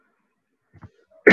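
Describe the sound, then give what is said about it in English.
A short, faint rasp in near silence, then a sudden loud, harsh cough bursts out right at the end. “Dude, sorry I keep coughing.”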